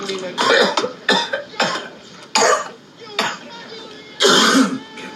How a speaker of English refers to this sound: Coughing's good. It opens up the capillaries, you know. When you cough, you're pulling air. Or in this case, smoke into parts of the lungs that don't normally get used. And so coughing's good. It gets you higher.